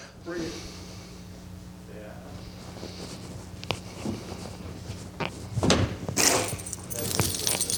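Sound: keys jangling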